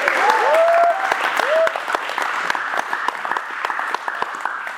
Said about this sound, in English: I think God deserves a big round of applause.